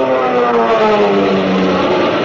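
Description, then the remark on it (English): Loud, continuous roar of Nazi fighter plane engines zooming past overhead, the droning pitch sliding steadily downward as they dive to bomb ships, with no voices. “You can see the Nazi planes diving.”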